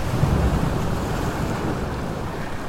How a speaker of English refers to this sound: Look up there, into the waves. Do you see anything?